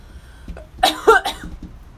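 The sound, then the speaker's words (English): A few sharp coughs in quick succession, harsh and breathy bursts with a rough throaty edge, heard alone without talking. “Let me cough it out.”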